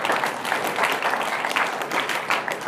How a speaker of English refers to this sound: Yeah, that is something to clap about.